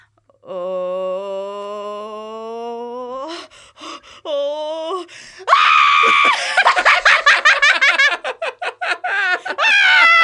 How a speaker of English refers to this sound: And in contrast, here's what a bunch of annoying screaming kids and their parents sound like on the roller coaster.